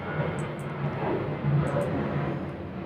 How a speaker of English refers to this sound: Can you hear the airplane, Wayne? Yeah, that's pretty loud.